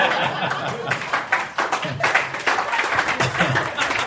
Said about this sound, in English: That smattering of applause is people being like, I think it's done.